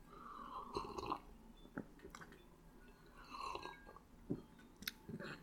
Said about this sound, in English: And let me have a sip of my coffee here.